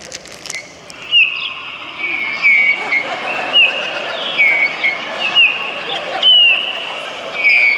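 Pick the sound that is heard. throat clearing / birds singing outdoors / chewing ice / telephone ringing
birds singing outdoors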